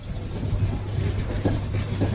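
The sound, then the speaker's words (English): Steady low rumble of ambience at the train station in Kyiv, Ukraine, where people are rushing in to get out of the city. A constant droning hum is broken by a couple of brief clattering bursts near the end; no one speaks. “I'm at the train station here in Kyiv, and we've been seeing people rushing to this station this morning, trying to get out of the city.”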